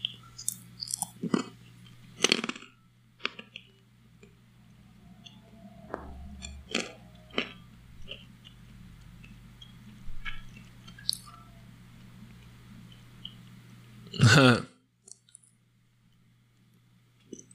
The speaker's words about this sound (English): That other guy just burps a lot.